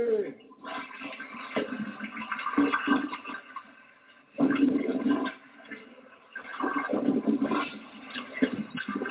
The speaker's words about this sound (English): Just spraying it with some water here so that way maybe I can actually get some of this stuff off.